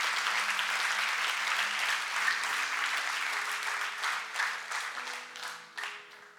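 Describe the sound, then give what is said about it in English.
An audience claps together in a dense, steady burst of applause that holds strong for several seconds, then thins into scattered, irregular claps as it fades out. “We just give Jesus a clap.”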